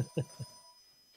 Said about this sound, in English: Oh, his phone.